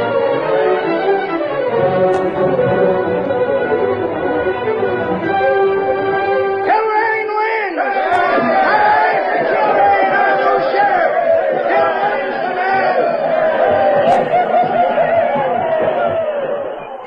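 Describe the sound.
A dense crowd filling a street roars and clamors continuously at the announcement of the election winner, Kilrain, many voices shouting over one another at full volume, with a brief shift around the middle before the excited din carries on to the end.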